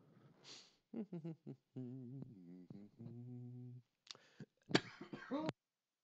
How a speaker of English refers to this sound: Spontaneous coughing.